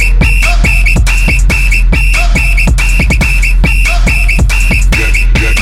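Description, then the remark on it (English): Short, high-pitched whistle blasts repeat in a steady rhythmic pattern over a loud, thumping beat with heavy bass, the whistle riding on top of the music throughout. “Get low when the whistle's out.”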